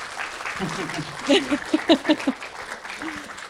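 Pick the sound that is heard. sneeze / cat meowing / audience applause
audience applause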